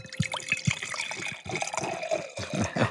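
Liquid pours steadily into a glass, a gurgling trickle whose pitch rises as it fills, with a few splashy bursts and no voices.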